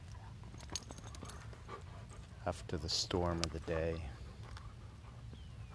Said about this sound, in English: Me putting a stick in the little puppy's mouth. And now the big dog grabbing the stick.